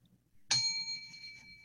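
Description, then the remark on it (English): A small bell is struck once with a bright, clear ding whose ringing tone lingers and slowly fades for over a second, over a faint low background rumble. “Once I ring the bell, you may start.”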